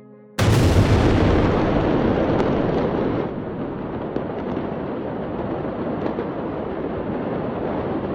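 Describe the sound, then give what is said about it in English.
A sudden, loud blast of pyrotechnics bursts in after a brief quiet moment, followed by a sustained roar of exploding fireworks with scattered sharp cracks continuing to the end, from a fire at a port warehouse storing fireworks, at 6.07 p.m., about 20 minutes after the fire was reported. “Emergency workers reported hearing the sound of exploding fireworks all around them.”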